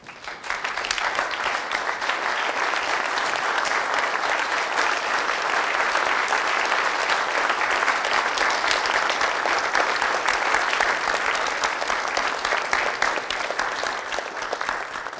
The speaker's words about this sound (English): Let's stand together and give him a hand clap of praise.